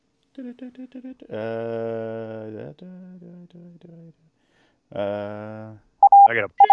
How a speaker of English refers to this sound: That's just Morse code. Jesus Christ, turn that off.